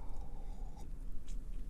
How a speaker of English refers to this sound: Let me start, actually, with a sip of my coffee.